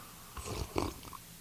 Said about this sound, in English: Sorry, I take a sip of coffee.